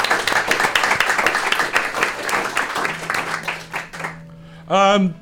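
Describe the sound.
An audience applauds with dense, steady clapping for about four seconds, fading out as a single loud voice breaks in at the end.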